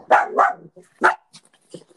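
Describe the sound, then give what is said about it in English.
A dog barks three times, two quick woofs followed by a single louder one, then a few faint whimpers and small noises trail off. The barking stands alone without talk. “And the reason why I asked about all this is because, hey, is that a dog in the background?”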